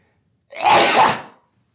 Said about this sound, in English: Hold on, I gotta sneeze.